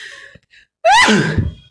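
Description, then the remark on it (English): A single loud sneeze: a quick rising voiced intake sharpens into an explosive, noisy burst that trails off. Faint breathing is audible just before it, and no one speaks. “Sorry. Bless you.”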